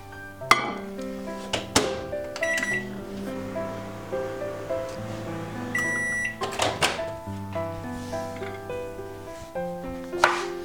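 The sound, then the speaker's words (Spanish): A microwave oven melting couverture chocolate runs with a steady low hum, punctuated by several sharp clicks and clatters that stand out near the start and again midway, with no talking. “Derretir el chocolate de cobertura en el microondas.”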